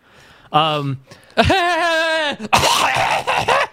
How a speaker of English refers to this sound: that was me coughing.